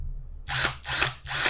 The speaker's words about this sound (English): So this is brushed. There's brushes inside this. Yeah. Which is like, you see it? You see the little lights, folks? Maybe not. He's making fun of my drill.